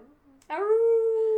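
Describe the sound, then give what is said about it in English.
A person imitates a wolf howl: one loud, sustained voiced howl that swoops up briefly and then holds a steady pitch for about a second, following a moment of quiet. “He's a lone wolf.”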